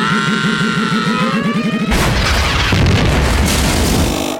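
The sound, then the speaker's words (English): A pod racer's pulsing, whining engine drone cuts off abruptly into a loud, sustained crash as it careens into a boulder, a broad rumbling smash as its engines disintegrate, with scattered debris that slowly settles while the cockpit bumps along the sand, with no talking. “His engines disintegrate from the impact, and his cockpit bumps along the surface of the sand until it comes to rest in his moment of defeat.”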